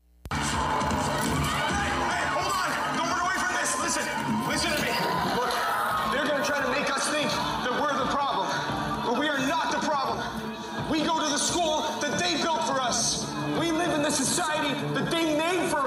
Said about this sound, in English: This is more like a punk metal groovy type thing. I'm just showing off that I can sing and do more with my vocals other than scream and growl.